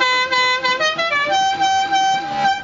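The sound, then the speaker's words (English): A loud, brassy car horn, sounded in place of a train whistle, plays a quick melody of several notes, its buzzy tone stepping up and down in pitch for about two and a half seconds, with no talking. “That's no sound for a train whistle to make.”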